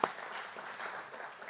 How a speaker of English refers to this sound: There's tons of things in the Psalms, but it says here, come everyone, clap your hands. We did that earlier. Let's do it. Okay.